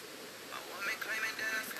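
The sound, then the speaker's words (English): A steady, hissing rush of running water flows continuously at low volume, like a stream or outflow, with slight swells in intensity and no clear voices. “I think it's crazy that the water just running back there like that.”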